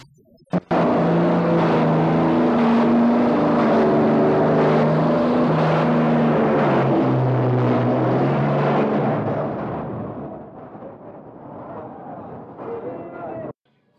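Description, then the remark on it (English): A loud truck engine revs hard, its droning pitch climbing and dipping for about thirteen seconds before easing off and cutting out abruptly. “Listen to that truck rev it up there for a second.”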